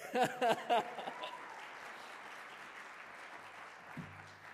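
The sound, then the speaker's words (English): A crowd applauds steadily for several seconds, a dense wash of many hands clapping, with a few short voiced whoops at the start before the clapping carries on alone. “I always try and come out as the announcements are ending, because then I feel like you're clapping for me.”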